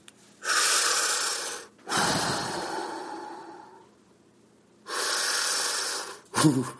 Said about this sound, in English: Oh, let's do our deep breathing. Some people say it's helping.